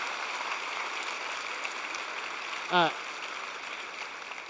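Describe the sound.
An audience claps in a steady, dense wash of applause that holds for the whole stretch, with a brief whoop or voice cutting through near the end.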